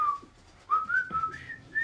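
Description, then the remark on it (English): A person whistles a bright, jaunty march tune, the one whistled in the film The Breakfast Club, with clear, sustained notes, pausing briefly before resuming the melody with no talking. “So the thing that they're whistling in Breakfast Club, that”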